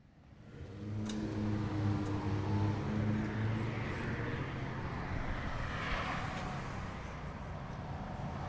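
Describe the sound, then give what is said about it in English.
Steady street-corner traffic ambience at the corner of Hoover and Jefferson, at USC in South L.A., on Parking Day: a continuous wash of passing cars with a low, droning engine hum that holds throughout. Fairly loud, with no voices. “We're on the corner of Hoover and Jefferson.”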